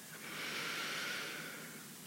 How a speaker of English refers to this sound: Deep belly breathing.